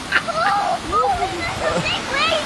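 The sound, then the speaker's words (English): Big, very cold ocean waves crash and rush in a steady, loud roar of churning water at Missaquanicut, with excited voices calling out over the surf as people wade in. “Big waves are coming and taking my granddaughter away.”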